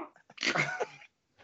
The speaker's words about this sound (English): Yo, you about to give yourself an aneurysm not trying not to cough. Yeah, they're like blood vessels in my eye. And then I gotta explain my cough when I'm done. Hey, this is, I actually had took something and went down the wrong pipe.